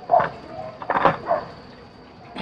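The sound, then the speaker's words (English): A dog barks excitedly in a few short, sharp bursts with uneven gaps between them, moderately loud, with no one talking over it. “That dog going crazy.”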